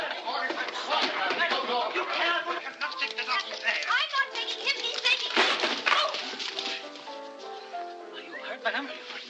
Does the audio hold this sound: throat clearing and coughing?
no